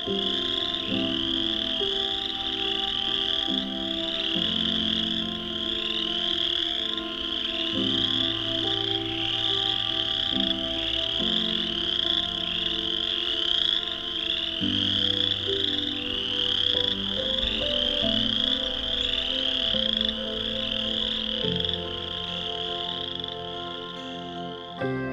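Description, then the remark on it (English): A dense chorus of chorus frogs calls nonstop, many overlapping rasping trills blending into a loud, steady wall of sound, with a low hum underneath and no voices, on an evening in late March 2021 at the Vine Mount Swamp east of Hamilton, Ontario. “In addition to chorus frogs, we'll be seeking some nocturnal birds, such as great horned owl and the American woodcock.”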